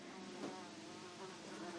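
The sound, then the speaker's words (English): A bee or fly buzzes steadily, a continuous droning hum with slight wavering in pitch, with no talking over it. “Go away, bee or fly.”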